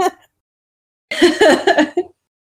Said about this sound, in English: Coughing over here. Yeah, you okay? Yeah, I think I swallowed wrong.